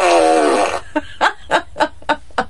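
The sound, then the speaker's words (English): A loud, buzzy fart stretches for nearly a second, then gives way to a string of short, rhythmic bursts of laughter. “Just one long continuous fart party.”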